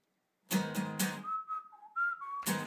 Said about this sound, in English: Ooh, I love it already. Got the whistles. He's whistling.